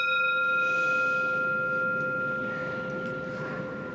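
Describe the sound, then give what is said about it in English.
A bell is struck once and its clear, ringing tone sustains and slowly fades over several seconds, heard against a steady background murmur of room noise. “Just gonna hear a little bit of the bell.”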